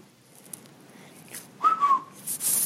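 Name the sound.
human whistling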